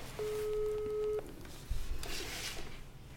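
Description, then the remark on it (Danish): A steady electronic telephone tone sounds for about a second, clear, as someone places a phone call, followed by a dull clunk and some rustling handling noise. No one speaks. “Det ringer vi altså lige op og siger.”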